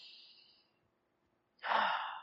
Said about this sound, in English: Now take a big deep breath in.